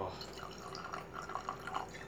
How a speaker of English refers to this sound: Come on, I'm going to pour a drink for you.